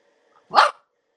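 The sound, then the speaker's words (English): A single sharp bark from a year-and-a-half-old female dog, short and loud, with quiet before and after and no voices. “We can hear your dog, too.”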